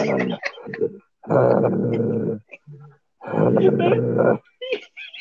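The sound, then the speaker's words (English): A voice imitates a giant monster with two long, loud, rough growls, each about a second, separated by short breathy grunts and huffs of heavy breathing. “I was like, for always making a growl noise and being huge, just sneaks up on people like a ninja.”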